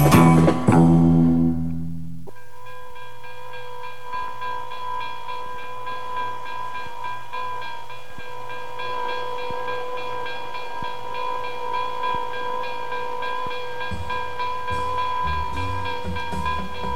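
A train rolls steadily along the rails with a low rumble and regular clacking beats, a sustained whistling tone hanging over it after a brief loud burst at the start. No one speaks.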